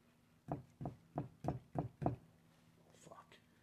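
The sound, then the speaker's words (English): Six quick, evenly spaced knocks of cigar ash being tapped off against a hard edge, moderately loud, followed by a brief faint murmur of a voice. “You don't smack it, you just kind of knock it off.”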